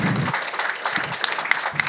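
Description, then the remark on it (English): A church audience applauds, a steady wash of many hands clapping together, fairly loud and continuous for a couple of seconds with no voices standing out. “We can clap for that.”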